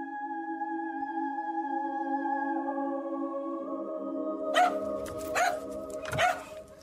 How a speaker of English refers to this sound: My dog came down kind of barking at the bedroom door, which is not unusual because he would often come down.